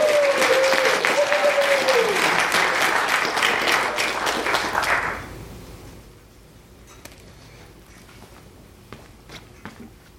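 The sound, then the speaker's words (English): A burst of loud, dense audience applause for a quiz winner who answered a trivia question about the film Evil Dead fills the first five seconds, fading into scattered claps and quiet room noise, with a brief whistle-like tone early on. “Applause. Come on. He won something.”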